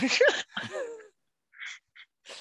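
A coughing fit: two loud, rasping, voiced coughs in quick succession, then three shorter, breathier, quieter coughs spaced out after a brief pause.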